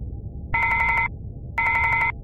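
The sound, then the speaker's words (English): An intercom phone aboard a spaceship on Mars rings twice, each a half-second electronic trill with a brief pause between, fairly loud over a steady low background rumble. “Give me the intercom phone, Lustig.”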